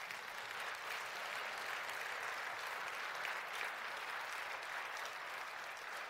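A crowd applauds steadily, a dense wash of clapping that holds at an even, strong level for about six seconds with no speech over it.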